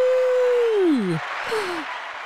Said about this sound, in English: I actually have a button that's applause. Oh, yeah. Here we go.